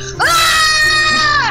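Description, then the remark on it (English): A single loud, sustained scream from one person, rising sharply in pitch at the start and holding steady for over a second before trailing off, unaccompanied. “If I hear the scream, well, I pick up my rapier and I say, Lefty, I'm coming!”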